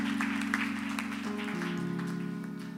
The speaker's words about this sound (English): Praise God for that. Let's clap our hands right now for that.